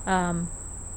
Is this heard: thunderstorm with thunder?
no